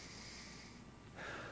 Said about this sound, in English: God, fill them. I have nothing to bring to you. So I take three deep breaths.